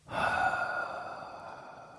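A single long, heavy exhale right up against the microphone, loud and breathy at the start and slowly fading over a couple of seconds, like a deflating sigh.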